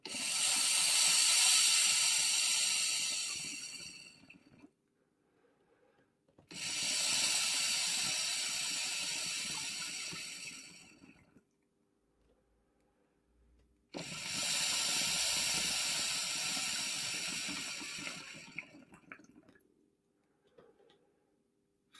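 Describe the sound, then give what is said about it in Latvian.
Water bubbles and gurgles through an electronic hookah pipe in three long, steady bursts separated by brief quiet pauses, fairly loud, with no one speaking. “Ka es esmu tā sūcis, ka laikam šķidrumi esmu uzsūcis, jo man kaut kur te jau burbuļo.”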